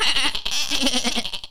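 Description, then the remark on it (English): A person bleats in a wavering, nasal voice that sounds like a sheep, one quavering call held for over a second, fairly loud with no other talking. “It sounds like a sheep.”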